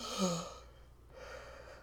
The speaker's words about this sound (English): Oh, my God. Big yawn.